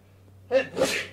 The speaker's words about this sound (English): excuse me, I got to sneeze.